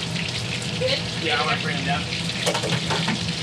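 Chicken fries in hot grease with a dense, steady crackling sizzle that fills the whole stretch, while faint, indistinct voices murmur underneath.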